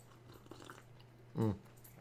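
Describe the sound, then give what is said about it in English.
A single short slurping sip of coffee, fairly loud, lasting a fraction of a second against an otherwise quiet background with a faint low hum. “I'm not sure if this is going to come up on mic, but I'm going to take a sip of my coffee.”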